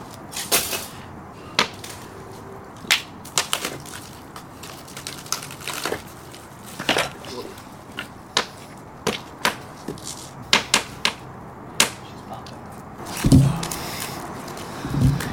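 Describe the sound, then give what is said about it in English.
Logs are tossed onto a campfire: irregular sharp knocks and crackling pops over a soft rushing bed, followed by a heavier, rumbling thud toward the end. No one speaks. “Let me toss another log on.”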